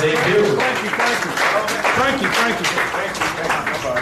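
A crowd claps and cheers steadily for about four seconds, a dense, even wash of applause with excited voices mixed through it and no clear pauses, applauding boxer Frankie Lynn, who is to make his pro debut on July 16th against Daryl Jackson.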